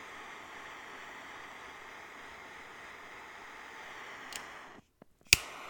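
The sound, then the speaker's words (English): Steady rain falls as a soft, even hiss for several seconds, then cuts off abruptly, followed by a few sharp clicks and one louder snap-like tick at the end. “Going to relight this, and I'm going to enjoy this cigar and listen to the rain.”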